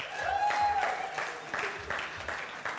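An audience claps in a round of applause, a dense crackle of many hands with a few voices and a brief whistle rising over it, steady and fairly loud throughout; those clapping are showing they are the youngest child in their family.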